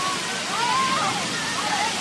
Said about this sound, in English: We leave you this week splashing about in a fountain. Right next to our studios in downtown Boston is a huge circular fountain at the Christian Science Center, It is designed for people to come and play in during the hot days of summer.